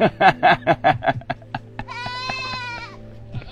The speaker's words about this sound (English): These goats are hilarious.